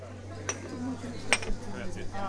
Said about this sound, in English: The old-school coffee house has a long counter, rich wood decor, and an old-fashioned espresso machine. I join the other refugees from the rain at the busy bar. Baristas hustle to fill orders.